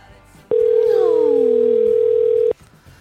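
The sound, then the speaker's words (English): A telephone line tone from an unanswered phone call sounds as one loud, steady, mid-pitched note lasting about two seconds, then cuts off abruptly, with faint falling, whiny sounds underneath and quiet murmur before and after. “Your call has been... He didn't answer.”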